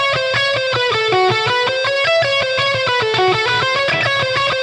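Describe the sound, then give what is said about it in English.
A blues guitar lick with every note picked, ending on an upstroke: a quick steady run of distinct notes at an even volume, played alone with a slightly distorted, bright tone. “Now you have to think about this as you're playing this. You'll notice I'm picking everything.”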